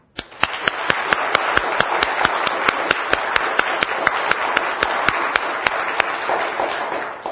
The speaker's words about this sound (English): Okay, we're just going to clap. We're going to clap vigorously and loudly. Okay, ready?